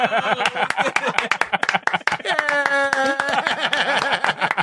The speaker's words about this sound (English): That's for the whole podcast. I'm applauding the whole podcast. Thank you, guys.